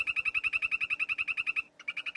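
A poison dart frog calls nearby in a rapid, buzzy trill of evenly spaced high-pitched pulses, pausing briefly before the trill starts up again. No voices are heard.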